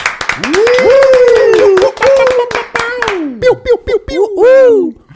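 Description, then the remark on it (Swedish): Audience applause welcoming actor Mattias Varela: a run of sharp, rapid claps throughout, with a loud, sustained voice cheering and whooping over them, rising and falling in pitch before the clapping thins out at the end. “Damer och herrar, en varm applåd för Mattias Varela.”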